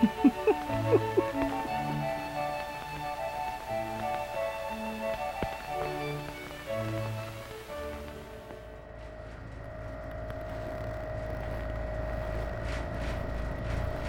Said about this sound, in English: The rhythmic thumping treads of the snowcat vibrated the cabin. Never driven one of these things before.